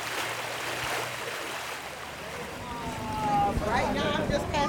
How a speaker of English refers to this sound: That stench seems to have multiple sources. About a mile away, another sewage manhole has erupted with a foul-smelling gusher.